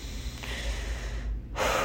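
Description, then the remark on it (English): A slow, deep breath drawn in through the nose, airy, with a low rush that swells into a brighter, sharper intake near the end; no one speaks. It is a breathing exercise to slow the breath. “Breathe in through your nose.”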